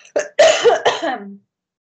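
A few close, harsh coughs in quick succession followed by a rough throat clearing that trails off, loud and up front with no talking over them.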